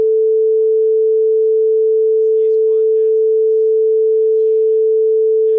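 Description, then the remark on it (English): A steady, loud censor beep: one unbroken mid-pitched sine tone holding for several seconds without wavering, with faint traces of talking just audible underneath. “I've always wanted to use like so a we have beep Jay in here, and I'm definitely gonna use it for there.”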